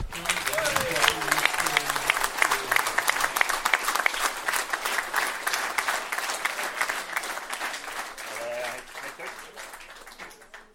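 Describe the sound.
Sustained audience applause following a toast fills the whole stretch, dense rapid clapping from many hands at steady volume, with faint voices murmuring underneath before it tapers slightly at the end.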